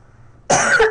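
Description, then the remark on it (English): A sudden, harsh, loud cough bursts in after a quiet moment, with a second cough starting right at the end, from a person who says something went in their throat. “Can you hold on a sec? I got a cough really bad.”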